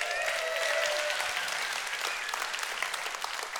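A crowd applauds steadily, dense overlapping hand claps forming a bright, sustained wash of sound at an even loudness for several seconds, with no voices standing out.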